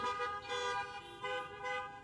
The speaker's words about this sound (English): If you recognize what I'm about to hold up, I want you to honk your horn in an amen.